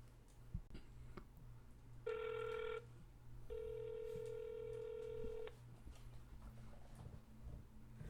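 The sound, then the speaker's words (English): Two electronic phone rings sound over a line as a call is placed to a friend in Chicago, a short one followed by a longer steady tone, with nobody picking up and a low hum underneath. No one speaks. “man, this guy's not, he's not answering the phone.”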